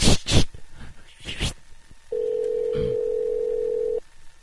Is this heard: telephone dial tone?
yes